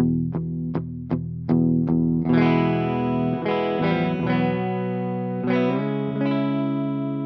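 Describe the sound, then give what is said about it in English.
A Breedlove acoustic guitar opens with four sharp, evenly spaced muted strums, then rings out in full sustained chords washed in heavy reverb and delay, loud with no voices. “This is a Breedlove.”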